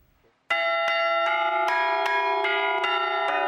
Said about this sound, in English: On this Easter Sunday morning, bells are ringing for our Seth Doan.